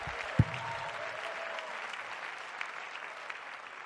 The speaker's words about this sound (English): Clap your hands when you get down there and just shout with your voice when you get down there. And just praise God when you're seated and clapping your hands because you know that the Holy Ghost is leading this house.